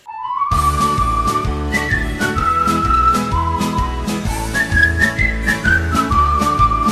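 Upbeat band music played during a 2.5-minute quiz round, with a steady oom-pah rhythm and regular percussive beats, while a clear, high whistled melody rides loudly on top.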